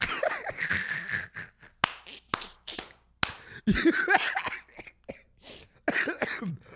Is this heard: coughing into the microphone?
yes